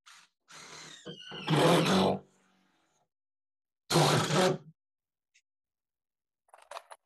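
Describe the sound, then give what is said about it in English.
A power drill whirs in two loud, grinding bursts as a man drives self-drilling screws through panels, flattening the sealant into a watertight joint between two panels, the first burst longer than the second, followed by brief faint clicks and scraping near the end. No one speaks. “And you see as he's drilling them that, you know, this sealant becomes flat and, you know, creates a nice watertight joint between the two panels.”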